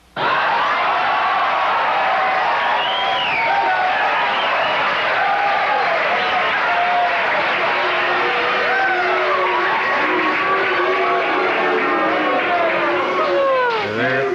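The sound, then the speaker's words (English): A large studio audience on Late Night with David Letterman roars and chants Cher's name together, a loud, sustained wall of many voices that carries on for the full stretch without pause. “Not booing, they're just chanting, share, share.”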